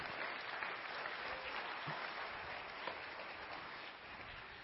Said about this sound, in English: After a while, it might look as if the entire red handkerchief changes to white, and if that happens, people will cheer and clap their hands.